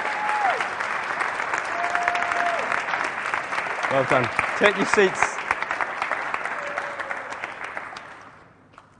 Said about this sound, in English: Can we give God a round of applause for these guys?